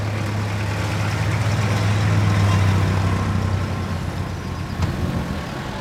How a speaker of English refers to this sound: A few miles downstream on the banks of the Mekong River, a truck packed high with household goods and food struggles up a short hill. I can see dozens of bags of popcorn and potato chips.